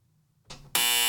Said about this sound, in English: You're getting three buzzers.